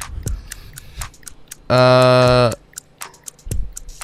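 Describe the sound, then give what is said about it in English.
A timer ticks steadily with sharp clicks about twice a second, interrupted midway by a loud, sustained buzzing beep that lasts under a second before the ticking resumes. “I was waiting for the clock.”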